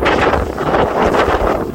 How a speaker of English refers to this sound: It's a little bit windy, honey. It's a dog walk in the North Pole. Listen to that howling wind.